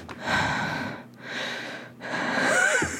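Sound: imitated heavy mouth breathing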